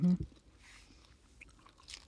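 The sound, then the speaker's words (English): Someone munches on crunchy food: soft, close chewing crunches come in a few irregular bursts after a short voiced murmur at the start, fairly quiet overall. “You're going to have footage of me munching.”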